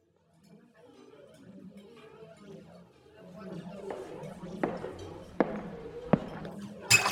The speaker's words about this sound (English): I am so sorry. I will clean that up right away. No glass hit you, did it? No, it didn't.